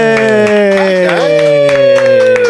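A run of sharp, loud claps from the left and right bars of a king-size Twix being hit together, repeating at an uneven rhythm, layered over a steady, sustained tonal sound that slowly dips in pitch.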